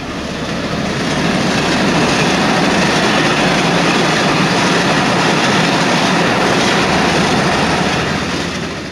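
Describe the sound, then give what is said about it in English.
A high-speed train roars past on the railway, a loud, sustained rushing that swells in quickly, holds steady for several seconds, then begins to fade. No voices. “That noise could become rather familiar to you if you happen to live near the proposed high-speed rail 2 route.”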